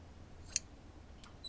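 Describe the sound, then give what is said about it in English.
A cord is snipped through with one sharp, crisp cut, followed by a couple of fainter clicks in a quiet storeroom, with no one speaking. “as soon as I cut this cord, they will slowly drop down and crush you both”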